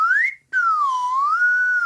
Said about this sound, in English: That's actually a syringe turned into a slide whistle. That's like a medical syringe. Yep, 100% real, bona fide medical. But this guy named Dr. Van Posnick, who's a real doctor, he makes a lot of musical instruments out of medical equipment